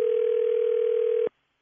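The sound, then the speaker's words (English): A steady, unbroken telephone dial tone hums at a single mid pitch for just over a second as a phone call is placed, loud and alone, then cuts off abruptly. “I'm calling for a reference.”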